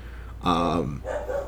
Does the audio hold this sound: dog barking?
yes